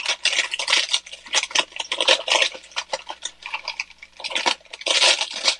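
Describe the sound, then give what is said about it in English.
Crisp crinkling and rustling of parchment paper being pulled out and measured off to line an 8x8 cake pan for microwave peanut butter fudge, in irregular bursts that run almost continuously, with no talking. “What I'm doing is measuring off a little bit of parchment paper.”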